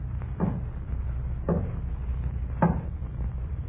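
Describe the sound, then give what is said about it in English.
Three slow, evenly spaced knocks on a door, each a short, dull thud rising above a steady low background hum, with no voices. “And there was a knocking at the door.”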